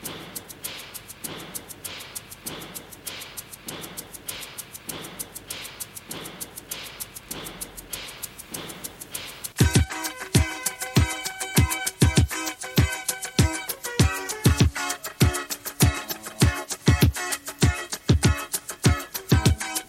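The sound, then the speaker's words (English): A 1982 pop song released on A&M Records plays, opening with a crisp, steady percussion pattern before the full band crashes in halfway through with a loud, thumping drum beat and bright synths. “And, well, let's play a little bit.”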